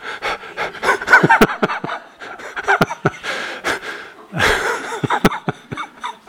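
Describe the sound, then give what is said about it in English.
A voice imitates heavy panting, with quick, rhythmic, breathy huffs, like someone out of breath after running down a hallway, continuing for several seconds with no speech. “I suppose I could literally run down the hallway, come panting in.”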